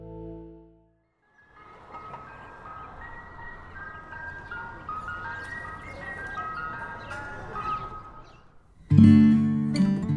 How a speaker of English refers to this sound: the ice cream truck tune we've all heard humming through our neighborhoods for decades